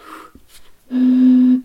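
Someone blows across the mouth of a partly drunk beer bottle, making a single loud, steady, low hollow hoot that holds one pitch for under a second, preceded by soft breathy puffs of air; drinking more from the bottle makes the tone deeper.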